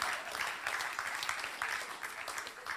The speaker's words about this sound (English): Come on, that is worthy of applause right there.